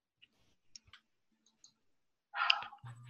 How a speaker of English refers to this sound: Why am I not clicking the right thing?